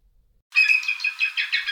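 A bald eagle call: a run of thin, high-pitched chittering whistles in quick repeated pulses, clear, starting after a moment of silence with no other sounds.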